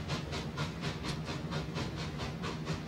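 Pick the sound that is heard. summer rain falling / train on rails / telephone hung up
train on rails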